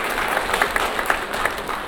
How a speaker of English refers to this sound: Can we clap for her? She did a good job.